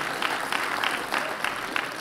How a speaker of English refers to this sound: If you believe that, give the Lord a big round of applause in this place. Hallelujah.